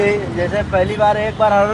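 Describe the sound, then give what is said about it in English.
Busy street traffic in Mumbai with honking horns: three bright, sustained horn blasts ring out in quick succession over a steady, dense rumble of engines and road noise. “So this next clip, an NPR reporter in Mumbai asks some people around town about why they honk.”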